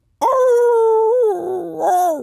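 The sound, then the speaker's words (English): A person lets out a single loud, drawn-out dog-like howl, holding a steady tone for about a second before it wavers and dips, then rises briefly again at the end. “That's my howl.”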